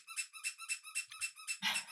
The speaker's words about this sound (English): And they run up the steps, squeaking with every step.